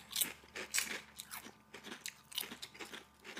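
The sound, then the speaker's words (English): Crisp crunching of air-fried kettle chips being chewed, a steady run of sharp, brittle bites repeating every fraction of a second with no talking. “The crunch or just the snack itself?”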